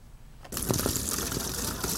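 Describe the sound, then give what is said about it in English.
After a brief hush, a bucket of water is upturned and dumped down a plastic chute as fish slide into the sea during a fish release at Badouzi Fishing Harbor, Taiwan; a sudden rushing gush keeps pouring and splashing steadily to the end. “A bucket of water is upturned and fish slide down a plastic chute into the sea.”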